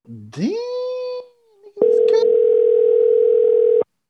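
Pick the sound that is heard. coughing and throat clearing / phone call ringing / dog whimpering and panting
phone call ringing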